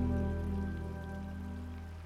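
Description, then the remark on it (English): The large South Falls Waterfall, several hundred feet below in a tree-lined canyon, makes a steady, continuous rushing roar of crashing water, fairly soft and heavy in the low end, with a sustained humming drone underneath and no voices. “The crashing sounds of the water envelops you.”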